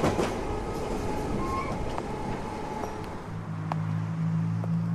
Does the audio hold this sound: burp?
no